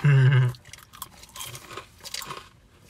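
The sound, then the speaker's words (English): A short, loud hummed tone, then steady crunchy chewing of onion rings: irregular bursts of crisp crackling, each bite-crunch moderately loud, continuing for a couple of seconds with no talking. “we eat onion rings because we're sad”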